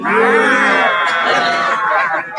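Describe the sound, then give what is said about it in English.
A herd of cows moos loudly together in a Muppets scene with Kermit, several long overlapping lowing calls blending into one continuous chorus that holds steady for a couple of seconds. “Hey, Kermit, this bunch of cows loves me.”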